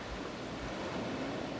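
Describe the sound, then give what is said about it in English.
Ocean surf rushing against the shore in a steady, hissing wash, constant in loudness, with no voices over it. “she turned and walked into the sea. The first wave hit her.”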